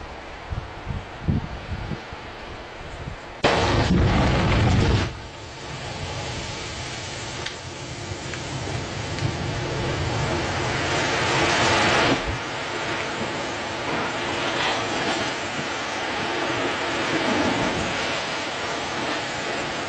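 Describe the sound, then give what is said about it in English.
A lightning strike over water: a sudden loud, crackling burst of noise after a few quiet seconds, followed by a long, steady rumbling roar that surges again before slowly easing off. No one speaks. “When lightning strikes water.”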